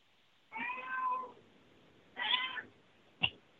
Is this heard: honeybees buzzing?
no